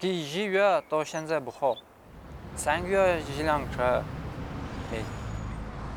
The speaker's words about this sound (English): This is the biggest second-hand car market in Kyrgyzstan.